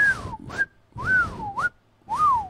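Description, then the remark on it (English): Three breathy, swooping whistle tones in quick succession, each gliding down then up in pitch, fairly loud, sounding like someone whistling with their mouth to imitate a blown whistle. “Now suck the rape whistle. Suck this little whistle dick, bitch. The whistle go woo woo.”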